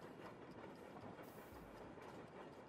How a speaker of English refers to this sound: we kick things off on a train, sort of. It is King Philip's moving castle, which is on train tracks